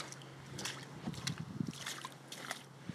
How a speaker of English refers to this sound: Walking through running water.